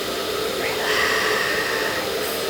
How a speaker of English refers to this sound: Relax. Put your head back on the pillow. That's right. The sound of the airplane engines. And there it goes. You're on it.